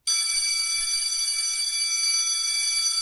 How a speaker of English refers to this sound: Well, there's the bell, so we'll wrap up.